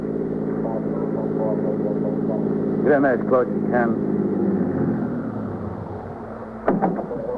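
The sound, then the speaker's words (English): A steady, low engine rumble of a police car being driven to 73rd Street and 3rd Avenue runs throughout, constant, while a man speaks briefly over it near the middle and again near the end. “I got in and we drove to 73rd Street and 3rd Avenue.”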